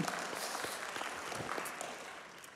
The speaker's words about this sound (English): You can clap again if you want to.